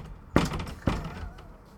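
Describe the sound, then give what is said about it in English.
Two dull, heavy thuds about half a second apart as a head is banged against a wall, fairly loud, with a faint hum in between. “Well, I'm banging my head against the wall here. Quite literally.”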